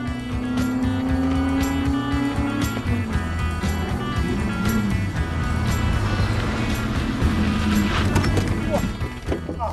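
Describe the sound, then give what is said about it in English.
A race car engine roars steadily at high speed, outputting maximum horsepower, loud, its pitch holding and shifting slightly as it runs, with indistinct voices partly buried beneath the constant mechanical drone. “This car wants to go faster.”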